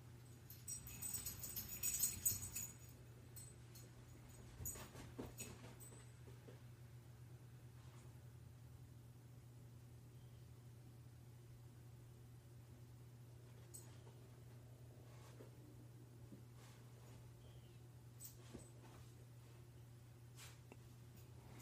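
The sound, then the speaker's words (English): A dog's chain jingles faintly for a couple of seconds, with a few scattered metallic clinks afterward, over a steady low electrical hum. “You can hear my dog in the background jingling his chain.”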